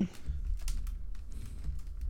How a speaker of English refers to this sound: I keep leaning on my keyboard to press this buzzer and it keeps creaking.